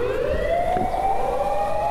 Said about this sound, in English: Oh, some siren. I don't know, is that police or fire? I'm not sure. Looks like a fire truck. I'm talking to you from Osaka, Japan. I'm right in the middle of the city. You can probably guess from the noise, the fire truck going by.